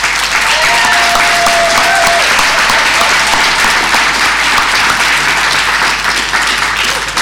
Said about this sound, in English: So, Councillor Hulse, I didn't even need to hold up the Kane Williamson sign. It was just immediate applause.